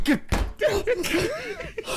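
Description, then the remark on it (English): A door shuts with a single dull thud near the start, while excited voices and exclamations carry on around it. “Door shut.”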